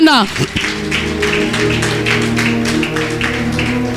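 An audience claps for the Lord together in a steady, brisk rhythm, the loud bursts of hand claps running over a sustained, droning musical chord underneath.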